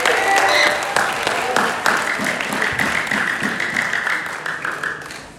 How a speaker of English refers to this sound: Round of applause.